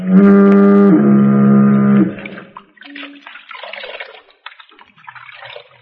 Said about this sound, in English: My old friend, the life boy Foghorn, you don't scare me.